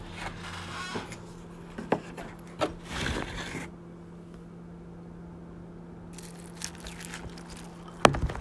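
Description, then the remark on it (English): Milk is poured extra close to a microphone into a cereal bowl, a rushing, crackly splash with scattered clicks lasting a few seconds, then a quieter stretch over a low steady hum ending with a sharp knock. “I'm going to pour the milk extra close to the mic so we can hear the succulent goodness.”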